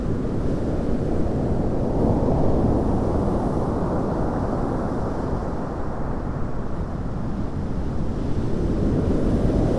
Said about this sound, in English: I've walked round from Poldhu Cove to Church Cove. It's a bit blustery here.